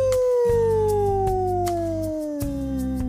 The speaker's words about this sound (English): The Wolf. Ow, ow, ow.